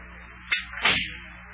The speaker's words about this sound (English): I'll just close the front door here so the cold air don't get into Big John's house.